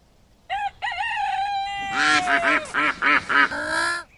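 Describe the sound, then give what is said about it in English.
A duck quacks loudly: a long, wavering drawn-out call followed by a quick run of five or six harsh, nasal quacks, with no talking. “I don't go over to the duck pond and knock the bread out of your bill, do I?”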